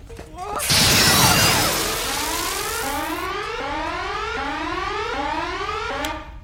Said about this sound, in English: and the dialogue when they're saying things like, as you know, Mr. Chekhov, you can't fire a phaser without setting off the alarms.